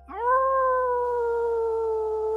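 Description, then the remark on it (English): A person howls like a wolf in one long, sustained, steady note that rises at the start and then holds, loud, with no talking. “You breathe deep, you join in the howl again with her.”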